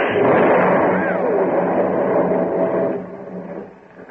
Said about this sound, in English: shots were like matches in a gas tank. The cleaning fluid fumes made the whole building explode in a roar of flame.